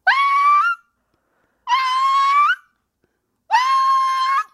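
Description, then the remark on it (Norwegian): A voice imitates an arctic fox's scream three times: loud, shrill, wailing calls of under a second each, separated by short silences, with no other sound. “Og det jo sånn som jeg vet, da det en fjellrev rundt meg.”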